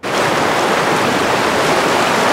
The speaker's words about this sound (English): Residents in Cache Creek living close to the Bonaparte River are nervously watching the fast-moving floodwaters.